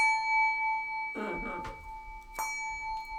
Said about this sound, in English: Made by the Schulmerich Company is also the Silver Melody bells. You'll hear a difference in the timbre of the instrument.